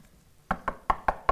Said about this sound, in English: Some cops knock on the door.